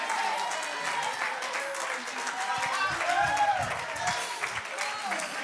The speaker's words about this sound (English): Clap your hands unto the Lord and magnify. In Jesus' name.